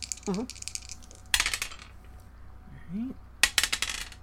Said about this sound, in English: so we get to roll the good dice.